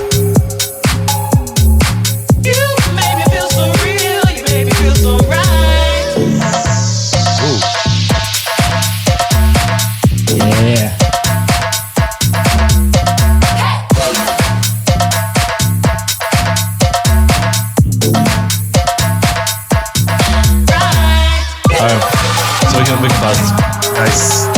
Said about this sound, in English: Like you're in a cave with all the echoing dubstep sounds and shit. Oh yeah. Yeah, good reverb on everything.